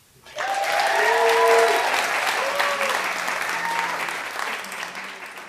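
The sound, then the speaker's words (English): A live audience welcoming the evening's first guest bursts into sustained applause, loud and dense with many hands clapping at once, holding steady for several seconds with a few faint cheers rising above it before it begins to taper. “Everyone, please, a big round of applause for Shelley.”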